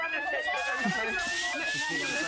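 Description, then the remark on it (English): A fire alarm in an office sounds continuously, a steady piercing electronic tone held without a break, fairly loud, with some indistinct background noise murmuring underneath. It was set off by somebody vaping in the toilet. “It's like now, our blooming office there about an hour ago when the fire alarm went off.”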